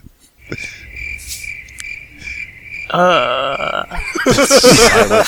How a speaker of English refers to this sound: Somebody edited in cricket noises.